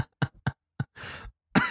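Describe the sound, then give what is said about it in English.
A loud run of sharp coughs in quick succession from a person drinking coffee, with a longer raspy throat-clearing hack partway through before one final forceful cough. “No, you're coughing because you're drinking coffee and you're maybe, doing.”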